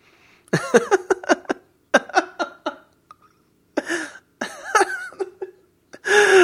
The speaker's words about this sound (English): Coughing.